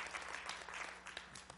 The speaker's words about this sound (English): Come on, give them a hand clap, honor them this morning. Praise God.